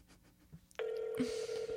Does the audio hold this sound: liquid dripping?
no